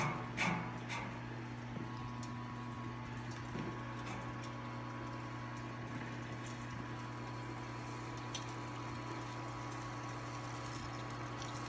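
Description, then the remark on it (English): A steady rush of hot water, 8 1/4 gallons at 163 degrees, flowing through a valve into a brewing mash tun holding about 30 pounds of grain, with a constant low mechanical hum underneath and a few small clanks near the start. “Hot water starts coming in.”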